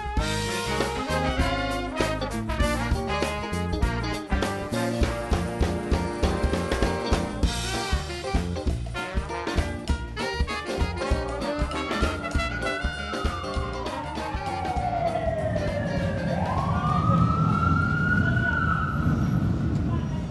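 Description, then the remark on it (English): After a stretch of rhythmic music, a wailing siren rises and falls over the steady rumble of busy six-lane street traffic with two streetcar lines on Canal Street in New Orleans, growing louder toward the end. “Two streetcar lines running between six lanes of traffic, Canal Street is the largest thoroughfare in New Orleans, bustling with people traipsing in and out of hotels, restaurants, and souvenir shops.”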